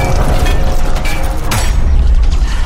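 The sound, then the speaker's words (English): A heavy mechanical door grinds and clanks shut, with ratcheting metal clicks and a deep thud as the locking mechanism engages to seal it, loud, no voices. “Lock it down. Seal the door.”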